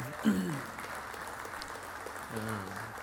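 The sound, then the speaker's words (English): An audience claps steadily for about three seconds, a dense, even patter of many hands, while a couple of voices briefly speak over it near the start and end. “You can clap, but Scott's not here.”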